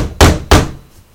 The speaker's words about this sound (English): Yeah. You knock on the door.